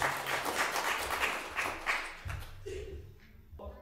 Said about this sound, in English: You all clapped. You didn't just pray for me like that.